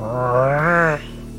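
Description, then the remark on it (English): A person imitates the high-pitched growl of a pug in a garden with one sustained, strained vocal snarl that rises slightly in pitch, lasts about a second, then cuts off into quiet. “Then, Clutch, you hear something. A growl. A high-pitched...”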